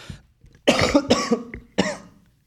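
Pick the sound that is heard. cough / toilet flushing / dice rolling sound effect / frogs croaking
cough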